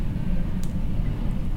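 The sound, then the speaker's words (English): A plane flying overhead makes a steady, deep rumble that holds even in loudness throughout, with no voices over it. “As this plane flies overhead that you might hear,”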